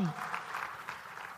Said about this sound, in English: I think that was a sympathy clap is what I think. And you didn't give me anything there, all right?